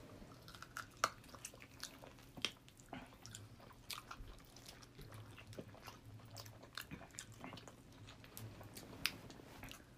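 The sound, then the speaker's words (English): Chewing of an air-fried chicken wing, with soft irregular crunches and wet smacking bites repeating for several seconds, quiet overall and without any talking. “I'll eat this one. I'm eating the floor wing.”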